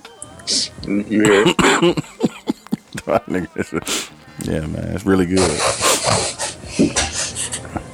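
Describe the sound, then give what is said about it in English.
A run of short, sharp sniffs, several in quick succession, breaking up stretches of casual male talk before and after. “My nigga go to sniffle.”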